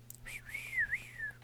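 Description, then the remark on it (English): A person whistles one sustained, wavering high note for about a second, mimicking a referee's whistle. It is fairly clear over a low, steady background hum. “You always gotta do your whistle.”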